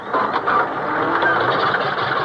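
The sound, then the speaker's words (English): A car engine cranks steadily without catching, a continuous whirring grind with a faint rhythmic chug running through it for a couple of seconds, with no voices. “Why doesn't this damn thing turn over?”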